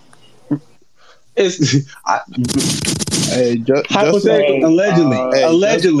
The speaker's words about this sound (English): Allegedly, just in case that nigga got off a gunshot,